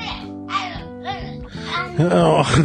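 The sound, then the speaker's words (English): A young child makes a series of short, bright vocal bursts imitating a duck's quack, rising into a louder, strained squawk at the end. “How's the duck go?”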